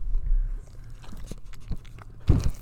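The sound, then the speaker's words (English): Chewing of a crunchy potato olé snack, with soft wet mouth noises, scattered crunches and a louder bite near the end. “You're gonna have to comment who that last person was that was just chewing that potato ole.”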